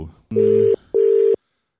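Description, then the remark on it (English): A phone line ringing on a call to the United Arab Emirates: two steady, buzzy electronic ring tones in quick succession, each under half a second, clear, with a short pause between and silence after. “Hi, who is this random person on the phone?”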